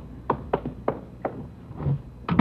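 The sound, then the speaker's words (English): Chief Backstrand's office door off a police squad room opening: a few sharp clicks and knocks of the handle and latch, a low scraping moment, then a louder double thud as it swings. No one speaks. “We just got back from Santa Ana, where we'd been questioning a red-headed suspect, and we'd flopped in the squad room when Chief Backstrand's door opened.”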